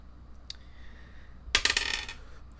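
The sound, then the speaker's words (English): A single faint click, then a burst of rapid hard clattering as dice tumble and rattle across a surface for about a second, fairly loud, with no voices. “And we're going to roll some COVID, or not COVID dice, the good dice.”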